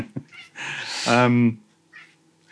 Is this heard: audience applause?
no